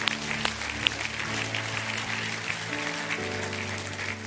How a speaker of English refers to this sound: Give these folks a great big we love you clap offering.